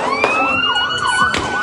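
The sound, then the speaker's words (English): A loud ambulance siren wails with a rising and falling tone as the ambulance rolls in to a scene where gunfire is aimed at a crowd, and two sharp gunshots briefly cut through it. No one speaks. “As the ambulance rolls in, the shots ring out.”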